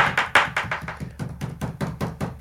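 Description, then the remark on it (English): A quick, steady run of about a dozen hand thumps banged on a desk as an improvised drumroll to add drama before an announcement, with the first few hits loudest before the rest settle into an even, slightly softer beat. “And now my dog is barking because he heard me bang on the desk.”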